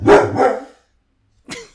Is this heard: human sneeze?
no